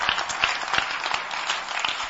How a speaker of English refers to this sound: Clap for Jesus. Clap for Jesus well.